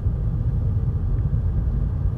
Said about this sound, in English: Well, I'm driving really fast, just seeing car that I was it was going in the opposite direction. It was going really slowly. I'm going 60. Is this too fast? Maybe.